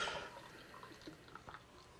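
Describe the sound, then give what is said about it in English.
A drink pours into a glass, starting with a brief splashy gush and trailing off into faint, scattered drips and trickles, with a little spilled; quiet, with no talking. “Check out that pour. I see a little spill right there.”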